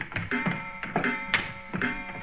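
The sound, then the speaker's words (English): Wooden stairs creak and squeak under a series of steady footsteps, each step bringing a short, strained groan, fairly loud over a faint background hum. “I wish these stairs didn't squeak so.”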